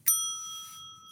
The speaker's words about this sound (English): That being said, let's get started. Cue the bell, cue the timer.